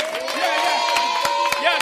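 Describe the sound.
An audience claps in scattered, uneven bursts while voices cheer and call out loudly throughout, the sharp hand claps standing out over the steady crowd noise, as a speaker begins a lesson on poultry.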